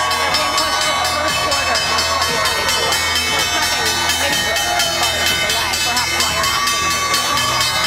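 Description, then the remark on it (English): A stock exchange opening bell rings steadily and loudly at the open of the big board while a crowd cheers and claps throughout, the clanging tone sustained under the continuous roar of voices. “At the opening bell here in the CNBC real-time exchange of the big board.”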